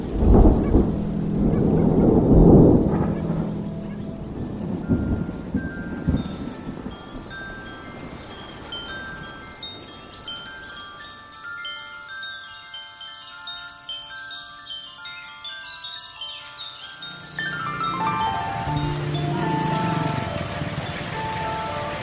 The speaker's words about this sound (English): Just another day in paradise. A tropical downpour in a working-class neighborhood on the outskirts of Hanoi.